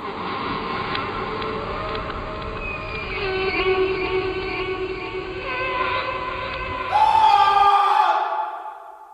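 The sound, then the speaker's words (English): A voice imitates a terrifying whale with long, droning moans and bellows that slide in pitch, then swell into a louder, higher wail near the end. “How can you describe in sounds the terror that is this whale?”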